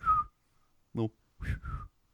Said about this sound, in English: I can't whistle.